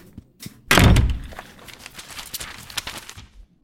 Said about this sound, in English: Shall I close the door?